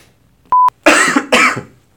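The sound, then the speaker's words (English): A brief electronic beep, then two loud, harsh coughs in quick succession, with no talking around them. “Sorry, I'm going to have to cut all this out of the podcast for me coughing.”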